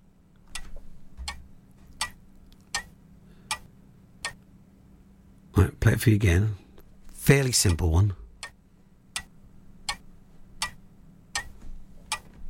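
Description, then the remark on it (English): A clock ticks steadily at an even, unhurried pace, each tick sharp and distinct against a low background hum, continuing under a brief burst of speech midway. “It's just a clock ticking. That's all it is, a clock.”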